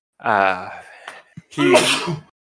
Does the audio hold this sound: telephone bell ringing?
no